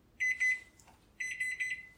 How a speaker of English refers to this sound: All right, we're set to bake. So the timer's about to ring.